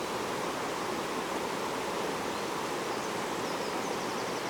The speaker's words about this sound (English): And the way that the river meets the underneath of the bridge here is really interesting. It's like as it's going up a hill in front of me and the water is rushing down the hill, it's somewhere in between a small river and a waterfall.